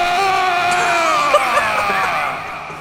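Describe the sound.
A person voices the big rage roar of Stigveld, a game character in a sewer: a long, monstrous, loud, raspy, strained howl held for nearly three seconds that slowly sinks in pitch before trailing off.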